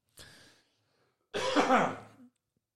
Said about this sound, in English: Didn't mute that cough.